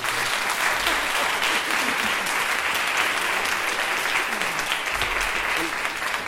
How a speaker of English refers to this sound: can we just have a round of applause for a fantastic performance?